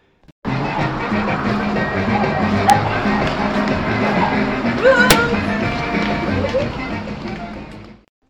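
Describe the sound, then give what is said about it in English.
Busy city street ambience in Playa del Carmen: a steady wash of traffic rumble and a murmuring crowd, with a couple of sharp clacks and faint chirpy squeaks poking through the dense, continuous noise. “And now I'm back in the city, exposed to a different kind of noise that's a little less soothing than the birds chirping over there in the sanctuary.”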